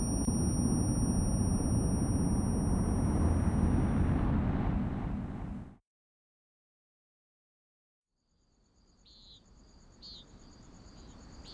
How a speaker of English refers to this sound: It was early morning. Birds were chirping, crickets were singing.